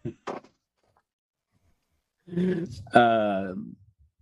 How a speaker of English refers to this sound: lets out a scream that sends birds flying in distress.